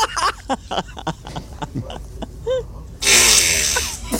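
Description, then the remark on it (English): A woman lets out a loud, raspy fart in a library after a few seconds of quieter voices and scattered noises, holding strong for over a second until the end. “She's shocked by her own fart. That was louder than she expected.”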